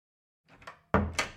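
A bedroom door swings shut, a soft brushing movement followed by a solid thud as it latches, with no one speaking.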